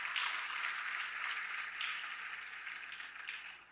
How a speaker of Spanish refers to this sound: Y el cuarto punto, dale un aplauso al Señor si se lo vas a dar, hácelo bien.